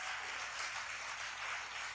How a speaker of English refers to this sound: Put your hands together for Jesus. I want to see you clapping.